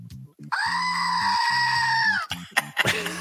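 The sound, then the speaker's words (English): A single long, wavering goat-like bleat, loud, holding for over a second and a half, most likely a human voice imitating a goat, followed by brief rustling noises. “The goat looked at me. He's like, bah.”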